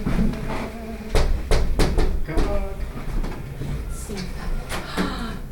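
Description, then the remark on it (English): A quick series of sharp knocks on a door, a few raps in a row followed by scattered single taps, with people talking in the background. “Could somebody please give their friendliest knock?”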